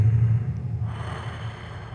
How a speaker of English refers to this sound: Breathing in